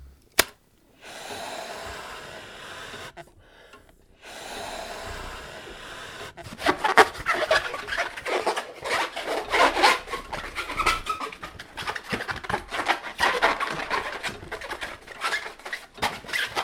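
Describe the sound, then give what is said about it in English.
Rubber squeaking and stretching as a balloon is twisted and knotted into a giraffe, a quiet start building into dense, busy squeaks and rubs, with no talking. “And I can also make a model of any animal in that zoo out of balloons.”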